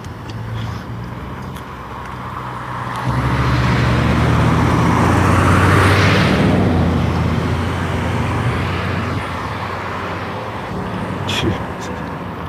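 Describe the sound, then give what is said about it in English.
A car approaches and passes, its tire and engine noise swelling to a peak midway and then fading, with a steady low rumble of road traffic throughout. “There's too many cars.”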